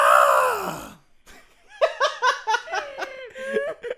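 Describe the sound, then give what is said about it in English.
A person lets out a loud, strained goat-like scream lasting about a second that trails downward, then after a brief pause breaks into a run of rhythmic giggling laughter. “Goat scream.”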